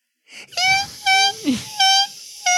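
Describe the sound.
A voice mimics a deflating balloon with squeaky, whining squeals: several sustained high-pitched tones in short bursts, broken by a quick downward sliding squeak midway.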